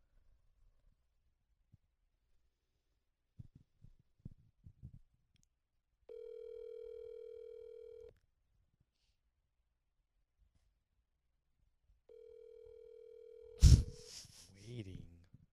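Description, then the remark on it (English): A string of soft taps as a number is dialed, followed by two long, steady humming telephone tones separated by a pause, then a sudden loud clatter as the line picks up. “Well, let me call him.”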